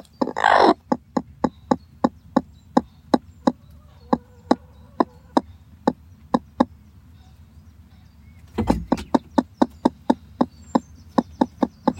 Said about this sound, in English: That's a warning sound from a hen telling me to go away because she's sat on an egg. She's gone broody and she's trying to hatch the egg.